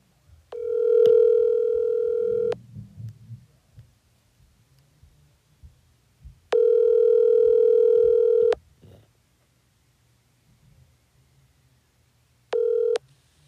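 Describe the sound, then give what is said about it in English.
A telephone line tone sounds before a phone call in long, steady electronic bursts, about two seconds each, with quiet gaps between; a third burst cuts off short. No voices, just faint low background noise. “All righty, here is the phone call conversation from earlier today.”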